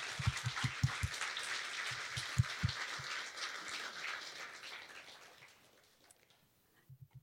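An audience applauds with a dense, steady patter of many hands clapping and some dull thumps underneath. The clapping thins out and fades to near silence, and a few soft taps follow.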